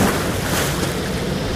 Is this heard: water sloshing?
yes